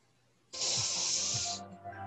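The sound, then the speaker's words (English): A steady spraying hiss of keyboard cleaner being sprayed on a phone bursts on abruptly and holds for about a second before cutting off, with faint low thumps underneath. “Are you spraying like keyboard cleaner on your phone?”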